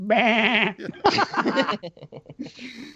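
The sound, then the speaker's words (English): A goat bleats loudly twice in quick succession, each cry quavering and nasal, followed by softer, choppy murmurs that trail off. “The Witch has a goat. What else has a goat?”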